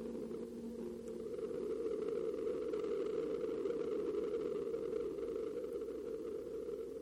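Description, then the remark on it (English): A sonified Mars seismometer recording from the InSight mission: a steady, dense low drone with a faint higher hum above it, holding at an even loudness for about seven seconds, with no voices. “It does kind of sound like something, like, traveled underneath it, but it could also be a wave, because, like, shock waves, and, like, when an explosion happens, you see that shock wave, and it's like, boom, and it travels”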